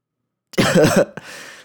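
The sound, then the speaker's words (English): A fairly loud, harsh, lingering cough after a moment of silence, followed by a second shorter cough and a breathy trailing rasp; no talking. The cough has persisted since an illness about two weeks earlier. “And my cough doesn't go away, right?”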